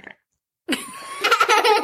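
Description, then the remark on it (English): A loud, drawn-out belch from a young boy, sudden and raspy with a sustained rough tone lasting over a second, preceded by a brief faint sound and a short silence. “My son belches like a man.”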